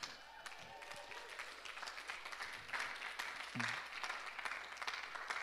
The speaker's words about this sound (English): Actually, would we just actually give a round of applause for those who are joining us online?